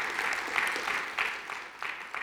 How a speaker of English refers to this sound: Come on, let's give him a good round of applause this morning.